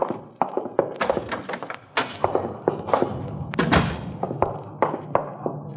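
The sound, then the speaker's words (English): A door connecting to a coffee shop being opened and shut, with a quick, irregular run of wooden thuds and knocks over a low background hum, and no talking. “You can use that door right here. It connects to the coffee shop.”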